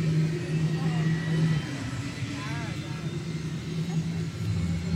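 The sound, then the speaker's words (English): A helicopter's second turbine engine starts and spools up, with a steady low drone, a faint rising whine above it, a deep growl and a constant rush of turbine noise that continues throughout. “Here comes engine number two, you'll hear that start up now.”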